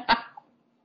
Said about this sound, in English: Did you hear that? Yeah, the sneeze. It was rusty.